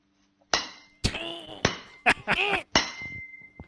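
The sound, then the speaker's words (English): A series of about six heavy, meaty smacks on metal, each with a sharp attack followed by a bright, ringing metallic tone that decays between hits, ending with a softer final tap. “That meaty smack in the, the metal ring.”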